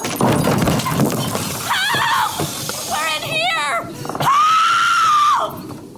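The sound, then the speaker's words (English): Objects thrown around by a person crash and shatter in a noisy burst at the start, followed by shrill wavering cries and a long, loud sustained scream, all intense. “Throwing things around like some irate toddler?”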